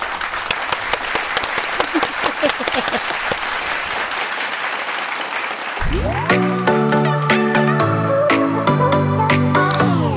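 A burst of dense, crackling applause from a crowd fills the first half, then gives way to a loud, bright musical jingle with sustained tones and sharp accents.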